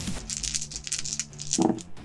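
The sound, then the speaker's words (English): A quick clattering patter of many dice, rolled for poison damage in a tabletop role-playing game, tumbling and knocking together across a hard tabletop, with a brief louder rattle near the end. “That's a lot of dice.”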